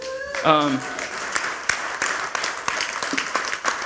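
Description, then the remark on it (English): An audience applauds, dense overlapping claps continuing steadily throughout, with a brief voiced cheer or whoop near the start. “If you missed last week, yeah, we can clap.”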